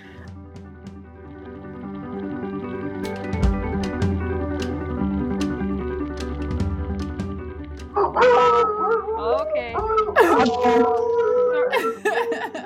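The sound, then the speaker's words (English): Puppies break into loud howling and yelping barks partway through, high wavering cries overlapping in bursts, while people talk underneath. “The puppies are like, call our associate professor.”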